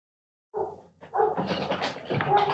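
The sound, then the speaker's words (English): A big dog lets out a run of deep, loud woofs in quick succession, the barks close together, with nothing else around them. “I hear a big dog woofing in the background.”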